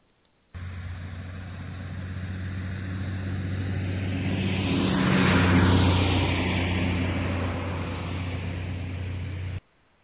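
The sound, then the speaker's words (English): A car drives along with a steady, droning engine and road rumble that swells louder midway as if speeding up or passing, then settles again; no voices, and it cuts in and out abruptly. “She had been taken by Henry into his car and driven around for a few hours.”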